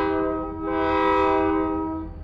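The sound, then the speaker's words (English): A contemporary freight train's horn blares as one long, steady chord, swelling louder in the middle as the train rolls through Pueblo with a low rumble underneath, then easing slightly toward the end. “That's a contemporary freight train rolling through Pueblo.”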